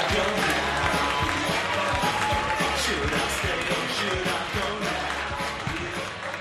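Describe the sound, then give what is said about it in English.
A large audience in Manchester claps and cheers continuously to welcome the first act, a dense, loud wash of applause and shouting voices that holds steady for several seconds and eases slightly toward the end. “start clapping. Build it up. Make it super loud.”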